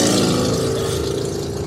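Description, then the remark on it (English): Motorcycles roar past, their engines revving in a loud, steady drone with a throaty buzzing tone that fills the whole moment, no voices over it. “What's that? Oh, the motorcycles.”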